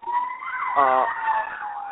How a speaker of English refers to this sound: I'm not sure what that was. Okay. Yeah, I'm here. I'm sorry. That was a fire engine behind me.